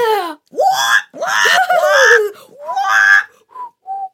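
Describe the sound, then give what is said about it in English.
A voice imitates screeching, squawking birds in a run of loud, shrill calls with rising and falling pitch, ending in two short, softer squawks. “The birds screeched and squawked in agreement, their feathers ruffled and their beaks sharp.”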